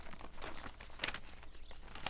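Pages of an edition of the Middletown Standard newspaper rustle and crinkle steadily as the paper is scanned at lightning speed, with two sharper crackles as sheets are handled, fairly quiet, with no voices.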